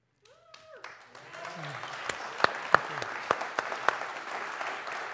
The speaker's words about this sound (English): They're already clapping.